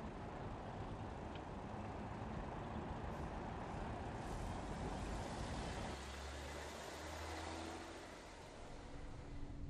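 Steady roar of heavy street traffic with a bus rumbling by, its low engine drone shifting about halfway through as it seems to slow, no voices present.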